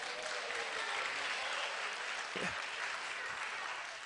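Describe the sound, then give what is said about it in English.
A large audience applauds itself on a Sunday night, a dense wash of clapping hands that stays loud and even throughout with no voices standing out. “We've been going all week, Friday, Saturday, Sunday, and you're back Sunday night, and I just want you to give yourself a round of applause because you blessed me.”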